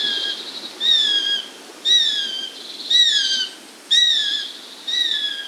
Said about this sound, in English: Okay, so for the audience at home, this is what a UK sparrowhawk sounds like.